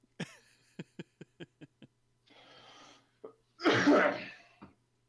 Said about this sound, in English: Sorry, I was coughing.